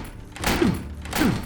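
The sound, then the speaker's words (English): Two heavy thuds as Joseph rams his shoulder into the locked wooden door of a sheep pen, spaced about half a second apart. Each impact is dull and booming, with a brief rattle. “Joseph rammed his shoulder into the door.”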